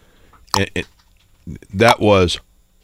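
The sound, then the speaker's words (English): A voice imitates egg whites plopping off a spoon into coffee: two quick wet vocal blips, a pause, then a longer gurgling, wobbling plop sound, fairly loud, with no words. “It was the last gasps of the egg whites holding onto the spoon before plopping into the coffee and then just floating.”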